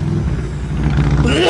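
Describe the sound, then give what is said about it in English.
A motorcycle engine rumbles with a steady, low, buzzing drone, then revs, its pitch climbing sharply in the final moments. The sound is loud and continuous throughout. “Is that motorcycle guy?”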